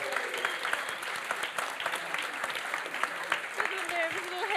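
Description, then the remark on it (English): A show audience applauds steadily, dense overlapping claps forming a continuous, fairly loud wash of sound, with a few faint voices and whoops mixed in underneath. “You can give him a big round of applause.”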